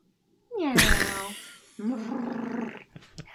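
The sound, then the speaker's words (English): A loud human voice does a rising cat-like cry, then a rough, rolling purr imitation that rumbles steadily for about a second before stopping. “That's a good purring.”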